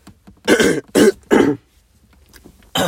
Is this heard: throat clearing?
yes